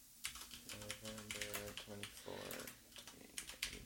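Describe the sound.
Rapid clicking of keys on a computer keyboard, a steady burst of typing as someone fills out a title read, with a faint voice murmuring underneath for part of it.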